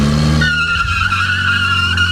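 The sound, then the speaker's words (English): A car engine roars as tires screech and skid loudly, a sustained high squeal over the revving motor as the driver hits the gas and speeds off from a police traffic stop. “When the officer began walking back to his car, Johansson hit the gas and sped off.”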